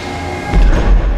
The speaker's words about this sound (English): Inner doors closed. Outer doors closed. The transport hold is now sealed.